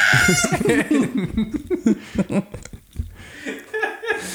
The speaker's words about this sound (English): Shut up, you bird.